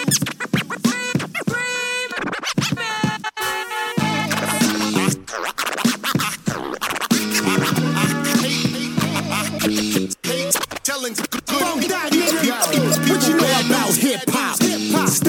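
A hip-hop remix opens with quick, choppy turntable scratches, then settles into a loud, steady beat with deep bass and rhythmic vocals riding over it.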